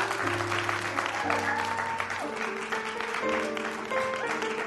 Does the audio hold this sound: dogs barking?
no